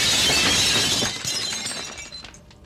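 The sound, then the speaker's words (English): Glass shatters loudly in one sudden crash as a fist strikes it, followed by scattered tinkling shards that fade out over a couple of seconds. No voices. “The tapping stops, and you see for a brief moment the imprint of the bottom of a fist as the glass shatters.”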